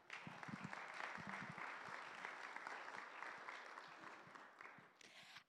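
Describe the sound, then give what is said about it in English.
An audience breaks into steady applause for a woman invited up to share her internship experience, a dense wash of clapping that holds at an even level for several seconds before tapering off abruptly at the end. “So she is going to share, if you want to give her a big round of applause.”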